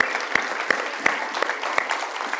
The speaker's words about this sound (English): If everybody could just clap and say thank you.